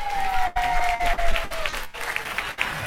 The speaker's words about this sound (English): Come on, keep her clapping. It's a long walk to the stage.